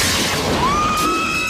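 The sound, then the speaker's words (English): A loud crash of a trailer's window glass shattering under slight pressure from a hand, a burst of breaking noise that fades while a thin ringing tone rises and lingers behind it. “He just put his hand on the shattered glass.”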